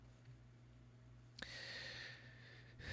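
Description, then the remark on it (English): A loud breath rushes into the microphone, a drawn-out airy exhale lasting about a second and a half over a low steady hum, then ends abruptly with a faint second puff. “creepy way of breathing, and I didn't mean it.”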